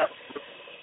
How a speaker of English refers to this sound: Who's that running water? I am. I'm cooking. I can multitask. Man. That's loud. It's loud. It's real loud.